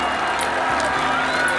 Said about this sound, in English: The crowd are going wild!